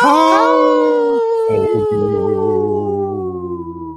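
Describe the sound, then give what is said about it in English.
A person imitates a deep wolf howl, one long sustained vocal tone that wavers and slowly slides downward, loud, fading gradually at the end. “Did you hear I went ho, like a deep wolf's voice?”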